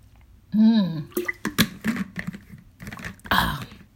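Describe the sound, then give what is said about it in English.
Someone sips water: a brief voiced hum, then a run of small wet slurps, clicks and swallowing noises, fairly quiet and irregular, with no talking. “I'm just sipping, I need to have some water.”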